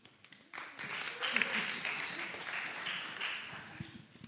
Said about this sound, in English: It's very nice. It is kind of rock star. Round of applause as well. That's good.